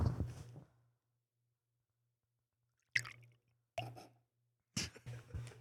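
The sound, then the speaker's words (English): Casamigos Añejo tequila being poured into a shot glass in four short gurgling splashes separated by brief pauses, with a faint low hum underneath and no talking. “We're drinking some Casamigos for y'all just listening, and the Añejo, and ASMR.”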